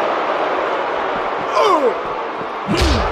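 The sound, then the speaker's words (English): A heavy body slams into a hallway doorway with a sharp, booming thud near the end as wrestler Ravishing Rick throws Vader into it, set against a steady roar of crowd noise and faint voices. “Oh, Ravishing Rick just throwing Vader into all the parts of that hallway.”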